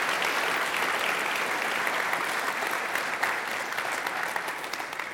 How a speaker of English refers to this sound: Isn't it encouraging just to see a bunch of college students who want to not just sing, but to lead other people in worshiping the Lord? Can we give these guys just another round of applause and say thank you?